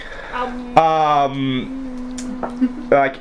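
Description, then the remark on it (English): A steady low electric hum, from an electric current run from a battery through a shard, drones throughout, swelling into a louder, buzzy tone rich in overtones for about a second, then settling back to the faint drone with a few brief crackles. “As you run an electric current through it, you start to hear a humming.”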